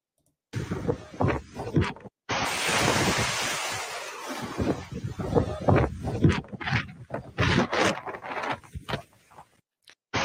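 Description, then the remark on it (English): Loud, blustery wind roars over crashing ocean surf on Maui during wildfires, where people jumped into the ocean to escape the fires, a dense continuous rush with gusting surges and buffeting against the microphone, after a brief first burst and a short gap. “This is terrifying footage showing people jumping into the ocean to escape the fires in Maui.”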